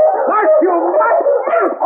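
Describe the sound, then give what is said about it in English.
A pack of sled dogs pulling a sled through drifting snow in a forest while the driver lashes them with a whip, yelping and howling together in a loud, continuous chorus, their wavering cries overlapping without a break. “The dogs pulled frantically, trying to escape the cruel bite of the whip.”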